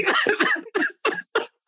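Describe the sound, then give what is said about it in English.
A voice imitates a film character's fit of coughing: one drawn-out rough hack, then three short, sharp coughs in quick succession, each separated by a brief pause. “Yeah, at first I thought the boyfriend was gonna like cough and be like, I'm okay.”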